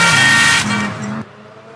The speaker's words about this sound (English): You are liable for any damages to the vehicle, so please stop the car and slow down. Slow down.